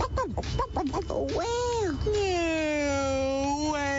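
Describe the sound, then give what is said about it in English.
A person's voice imitates a turkey gobbling with a quick, warbling burst of throaty notes, then slides into a long, drawn-out, wavering vocal tone, fairly loud. “What does the turkey say?”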